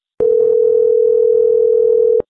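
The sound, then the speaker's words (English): A steady, unbroken telephone dial tone of an outgoing call to someone in California holds at one pitch for about two seconds, loud, with faint background rumble beneath it and clicks at the start and end. “I'm calling you.”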